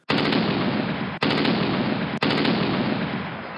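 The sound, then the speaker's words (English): Loud, dense bursts of rapid gunfire, like machine guns firing at a fighter pilot's airplane during a war, continuing almost without letup across three long stretches separated by two very brief breaks, with no voices. “One time his airplane was shot and he had to eject out of the seat and parachute down to the ground.”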